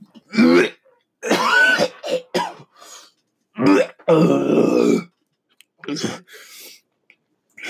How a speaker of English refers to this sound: Me hawking a loogie.